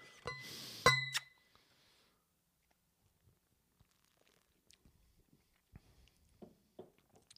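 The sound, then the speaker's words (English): Two glasses of beer clink together in a bright, ringing toast near the start, followed by quiet sipping and small handling sounds. “Here we go. Cheers to the daddies.”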